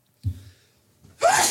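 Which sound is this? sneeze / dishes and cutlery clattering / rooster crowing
sneeze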